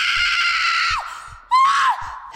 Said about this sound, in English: A panicked, caged feeling swelled in my chest and rose from my throat in a scream.